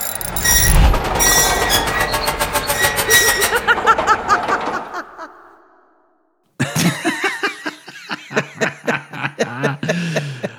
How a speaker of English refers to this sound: Okay, the clanking chairs. You like that? It's spooky. It see? Is spooky. It's it too spooky for me.